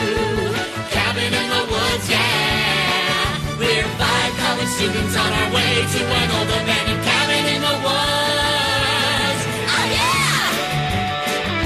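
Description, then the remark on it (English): A loud, energetic show tune from a stage musical plays continuously, with belted, almost shouted vocals over a full band and a driving, steady beat from start to finish. “he's had the song from the Evil Dead musical stuck in his head, even though it has nothing to do with anything”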